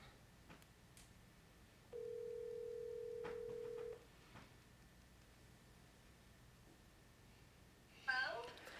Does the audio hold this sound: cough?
no